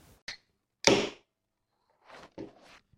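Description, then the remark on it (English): Drink cans being cracked open on a Hoops supporters' bus in the early 1990s: a small click, then a loud pop with a short fizzing hiss, followed by two softer hissy openings. No talking. “A familiar sound on the Hoops buses during the early 90s. The opening of cans.”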